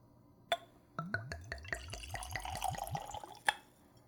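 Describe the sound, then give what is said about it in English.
Zacapa spirit glugs from a bottle with a cork stopper into a clean Glencairn whiskey nosing glass in a quick series of rhythmic gurgles, opening and ending with a light clink of glass, fairly quiet with no talking. “Now let's go for a pour.”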